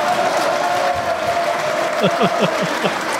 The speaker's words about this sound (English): In fact, you know what? I think this deserves a little applause.